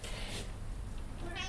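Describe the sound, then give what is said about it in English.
A cat named Gizmo meows twice in quick succession, the cries short, with a steady low background hum underneath and no one speaking. “I said the cat would come, didn't I? Let's just let him in.”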